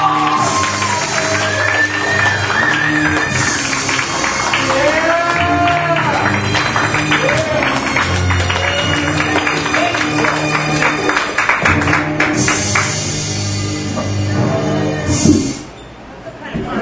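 At a comedy show, a crowd applauds and cheers steadily and loudly for about fifteen seconds over upbeat music as the next comic is introduced, with whoops rising above the clapping before it drops off sharply near the end.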